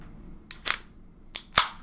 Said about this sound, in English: I'm going to crack open my Mountain Lightning Energy Zero.